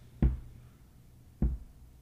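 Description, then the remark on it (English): Two dull, low thuds about a second apart, like something bumping against a table or chair leg, moderately loud with quiet between. “Maybe you can stop kicking the table or the chair or whatever.”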